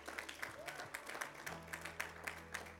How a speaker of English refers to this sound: Come on, y'all give the Lord a hand clap of praise.